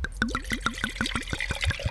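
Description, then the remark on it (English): Wine glugs rhythmically from a bottle into a glass, a quick series of gurgling pulses, with no talking over the pour. “Oh, see, now that was a great pour.”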